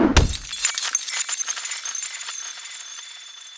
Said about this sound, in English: So these moments I wanted to blow up and make larger than life, like the giant aquarium crash, the bottle breaking over Fat Joe's head, or sorry, his alleged shooter's head.